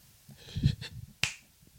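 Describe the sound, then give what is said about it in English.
A single sharp, bright finger snap cracks out at about 1.2 seconds, preceded by softer low rustling and a couple of muffled taps, then a short fading ring. “That's a really good snap.”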